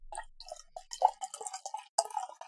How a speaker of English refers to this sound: Get a little bit of pour sound.